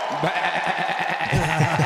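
A goat bleats loudly, a single wavering, quavering cry that stretches for a couple of seconds with a shaky, vibrato-like tone.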